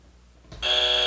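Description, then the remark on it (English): After a brief quiet moment, a loud game show buzzer blares abruptly and holds steady, a harsh, bright electronic drone that continues to the end. “hit the buzzer.”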